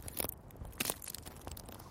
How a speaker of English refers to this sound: Suddenly, she heard movement from above the ground. Footsteps, crunching of twigs and foliage.